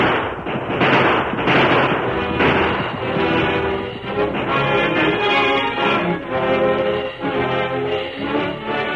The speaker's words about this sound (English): The sheriff and his posse were nearing the woods that concealed the camp when the outlaws started to shoot it out. The roar of gunfire put fresh heart into the men, and there's shooting going on ahead.